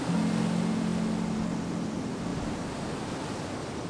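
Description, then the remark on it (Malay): A steady, soft wash of ocean surf, a continuous hissing roar of waves on the shore with no distinct individual crashes, fairly even in loudness throughout and with no voices. “anda dengarkan bunyi ombak silih berganti.”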